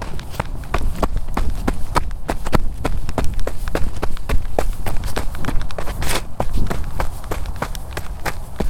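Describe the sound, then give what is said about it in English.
Quick, evenly paced running footsteps, roughly three sharp thuds per second, recorded as a sound effect for a character running at the end of a play, keep a steady rhythm for several seconds over a continuous low rumble, with no talking. “I don't know, is there any running in the play?”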